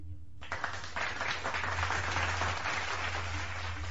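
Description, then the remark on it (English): After a brief pause, a steady round of applause starts and continues, many hands clapping in a dense crackling wash at an even level, with a low hum underneath. “You deserve a round of applause.”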